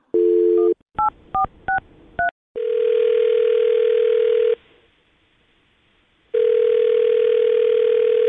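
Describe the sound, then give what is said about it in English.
A telephone call to a man's phone number: after a brief dial tone and a quick run of keypad beeps, the line rings with two long, steady ringback tones separated by a pause of silence. No one speaks. “Well, call his phone number right now and see if we can get him on the phone, okay?”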